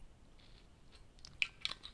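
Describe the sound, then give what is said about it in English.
Quiet sipping of 92 proof Sailor Jerry rum from a gallon bottle: soft wet mouth noises build up, then two small sharp clicks of lips and swallowing near the end, with no talking. “Let me take a sip of the Sailor Jerry, man.”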